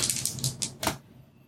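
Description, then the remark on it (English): A quick burst of hard, rattling clicks as small sand dice are rolled for a sand check, tumbling and clattering across a tabletop, several sharp knocks in about a second before settling into quiet. “Roll sand. Okay. Oh, sand. Yeah, actual this is actual sand check. Okay, where are my sand dice?”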